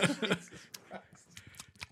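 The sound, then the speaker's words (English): A voice chuckles briefly, then someone drinks right by the microphone in a new studio setup: a few short wet slurps and sucking clicks in quick, uneven bursts, fairly loud and moist against an otherwise quiet background. “How do you drink and be by the microphone? That sounded disgusting.”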